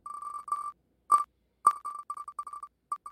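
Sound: prize wheel spinning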